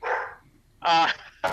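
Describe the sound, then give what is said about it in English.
A puppy lets out three deep, gruff barks in quick succession, loud, with no talking; the second bark is the fullest and the last is short and sharp. “It's a deep bark for a puppy.”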